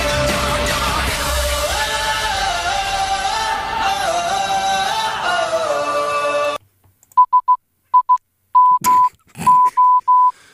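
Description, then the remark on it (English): Music plays for several seconds and cuts off, followed by Morse code played on a radio show: short and long steady beeps at one mid-range pitch in an uneven dot-dash pattern, with a few brief noisy bursts. “And I'll get to the end part of that song and then we'll come out and I'll play the Morse code of our Fair show.”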